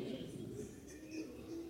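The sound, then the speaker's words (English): A man's voice mimics a rooster's crow, one drawn-out, wavering cock-a-doodle-doo held for nearly two seconds, steady in loudness. “But imagine if I had to cock-a-doodle-doo all day long.”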